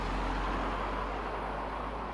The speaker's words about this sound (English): This is actually quite a main thoroughfare, so the traffic may very well increase.